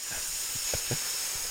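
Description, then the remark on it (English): A person imitates a woman hissing at another woman while walking down the street: a long, steady hissing sound through the teeth, a continuous breathy sibilant that holds for the full moment, with a few faint low thumps beneath it. “suddenly starts hissing”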